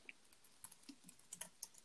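Quiet, irregular clicking of keys being typed on a computer keyboard, a quick scattered run of soft taps with brief pauses, with no voices.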